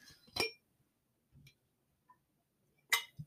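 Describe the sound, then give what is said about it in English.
Someone drinking water from a glass: a bright clink of the glass, a soft swallow, then another sharp clink and a low gulp, with quiet pauses between and no talking. “Drinking some water.”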